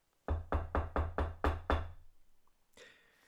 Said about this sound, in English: In response to our knocking, about 30 seconds later, the front door creaked open.